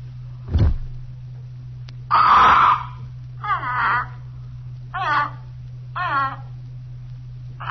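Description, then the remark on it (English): A caged parrot, disturbed as the cloth is pulled off its cage, squawks harshly, one loud rasping cry followed by three shorter squawks spaced about a second apart, fairly loud over a steady low hum, with a dull thump at the start. “We crouched there behind the curtains, watching the parrot. He protested a while at being so rudely disturbed by some unseen agency.”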